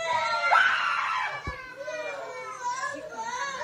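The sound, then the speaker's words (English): A group of children screaming together, several high-pitched voices overlapping in a loud, continuous chorus that rises and falls for a few seconds, with a brief thump partway through. “They're all screaming. All of them.”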